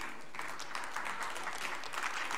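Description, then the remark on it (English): An audience claps, a steady wash of many overlapping hand claps at a moderate level, sustained throughout with no voices rising above it. “Don't clap, I ain't got time.”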